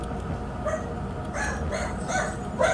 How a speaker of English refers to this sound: That's Jay's dog saying what's up too.